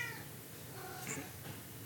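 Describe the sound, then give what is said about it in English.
A cat gives a soft, drawn-out meow, heard alone against quiet background noise with no one talking. “Like, it made me want to cry when she says it makes her day to hear the cats.”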